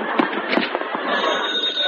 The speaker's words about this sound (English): Oh, it was my phone. Thank heaven.